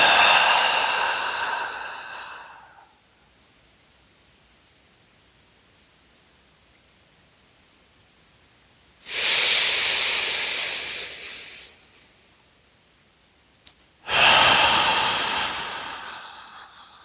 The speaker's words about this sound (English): If you're finished before me, keep going. We're going to do three more. Inhaling, exhaling.